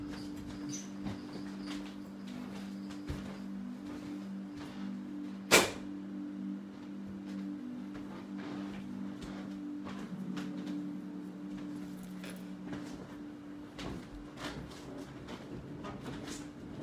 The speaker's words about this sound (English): I punched the fan, everybody, and now it doesn't squeak anymore. See? Violence is the answer sometimes.